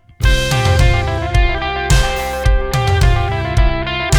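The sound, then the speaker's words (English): A full band heard as the electric guitar player's monitor mix, with a loud, driving electric guitar on top. Its chords ring thick and sustained over punchy rhythmic hits, with no voices. “So an electric guitar player would sound like this.”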